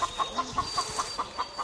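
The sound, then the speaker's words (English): A rapid, steady run of short clucks from chickens in a barnyard, about five per second, moderately loud, with a faint high whine and light background noise. “The chickens, who he used to chase away from his food with a grunt and a swipe of his tusks, now freely forage his bowl for food scraps, like mushroom stems, once relished, now disdained.”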